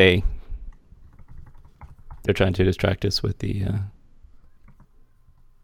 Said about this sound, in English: are you typing on your new MacBook Pro? Yes, I am. What does it sound like over the mic? It's okay. I mean, it's better than like this thing.